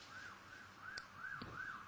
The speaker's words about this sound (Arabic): هذه سيارة الإسعاف. الله يستر إن شاء الله.